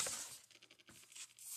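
Cards are shuffled, a quick run of soft, papery flutters and taps with no voice over them.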